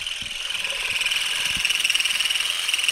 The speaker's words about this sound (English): You just kind of combed the vibrating rake through the branches and the olives started whizzing off in all directions.